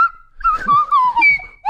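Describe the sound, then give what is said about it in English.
A slide whistle plays a quick run of gliding notes, its pitch sweeping up and down in short, fairly loud swoops that end with a brief rising slide. “Where did you come up on the slide whistle?”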